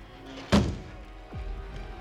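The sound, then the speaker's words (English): A door shuts with a single heavy thud, followed about a second later by a short scraping, falling-pitched sound as the door is locked. No one speaks. “The door locked behind his father's retreating back.”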